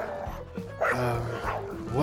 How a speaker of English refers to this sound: What noise? I can hear a load of animals just scratching and barking. Are you sure? Yes! You must be very deaf if you're not able to hear that. It feels like it's coming from the other room. No. That's next door. They run a little animal sanctuary.